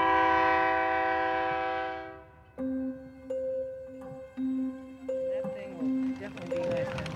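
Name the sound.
train arriving with horn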